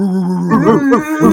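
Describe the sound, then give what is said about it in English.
Human voices imitate dog barks for a baseball pitcher, a steady droning tone giving way to a few loud, pitch-bending yelps and woofs in quick succession. “All we wanted to do was bark.”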